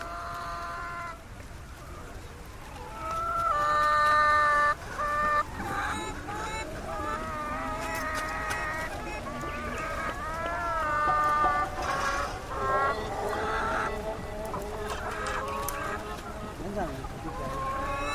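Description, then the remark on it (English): A dense, continuous chorus of chickens in stacked cages, carried as porters' cargo at a roadside rest stop, giving high, wavering, unearthly mewling cries that overlap one another, fairly loud, over a low rumble of background noise. “Their cargo consisted of chickens in stacked cages, and the chickens were making the most unearthly, unchicken-like mewling sounds.”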